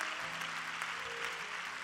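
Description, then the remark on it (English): An audience claps hands together in praise, a dense, steady wash of overlapping claps with no pauses, moderately loud, with faint sustained tones humming underneath. “Clap your hands and give praise.”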